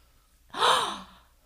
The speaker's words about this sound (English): Gasp, you don't say.